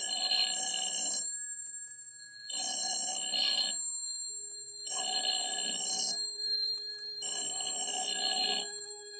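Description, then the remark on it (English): A telephone in an empty house rings four times in a steady rhythm, each bright, trilling ring separated by a short pause. It sounds clear, with no voices or other sounds around it. “A telephone ringing, ringing in an empty house.”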